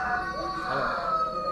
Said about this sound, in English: I love the fact that we have roosters crowing in the background. It's nice. It's ambience, a nice ambience.